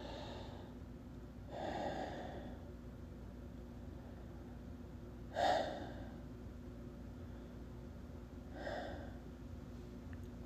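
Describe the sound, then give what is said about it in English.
Three slow, deep breaths, spaced a few seconds apart, each a soft airy rush. They are fairly quiet, heard alone over a faint steady background hum, with no talking. “And begin by taking three deep, heavy breaths.”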